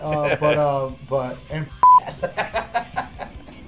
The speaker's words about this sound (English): Beep. Yeah, I gotta get the beep in there. I gotta put two beeps in that one.